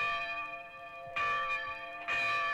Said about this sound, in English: A bell is to ring.